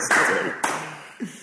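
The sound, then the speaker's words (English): A single sharp hand clap rings out in a bar in Liverpool, its echo trailing off, followed by a lighter tap and a soft low thump. “So, he's given us the clap.”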